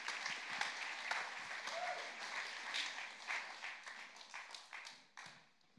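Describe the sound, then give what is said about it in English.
A church audience breaks into steady applause for the youth who are about to come up to preach, a dense wash of many hands clapping at a fairly loud, even level before thinning out and fading toward the end. “So can we just do a massive round of applause for the youth who are going to come up?”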